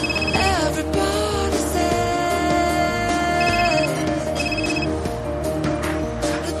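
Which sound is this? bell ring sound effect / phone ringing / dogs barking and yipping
phone ringing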